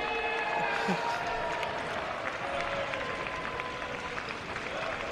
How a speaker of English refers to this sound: Nice round of applause for Darby Allin.